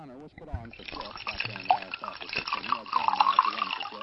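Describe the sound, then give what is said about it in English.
Water is poured into a glass, a steady liquid fill rising in pitch, heard faintly beneath continuous talking voices that dominate the foreground. “Gonna get you something to drink? Sure. A glass of water be fine. Coming right up.”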